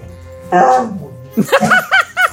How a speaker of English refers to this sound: The dog!